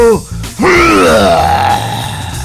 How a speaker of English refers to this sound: And I can clear my throat in front of you anytime I want.